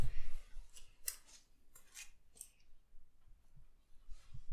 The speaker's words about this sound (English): What's that? It's over here. Something tapping on the window lightly.